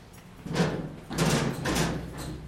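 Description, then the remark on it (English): A heavy steel blast door at a missile launch control center moves, with a steady low rumble under three grinding, scraping surges of metal. No one speaks. “Now, these are the ones that are going to be closed up to protect us from the missile sitting down the hallway right there.”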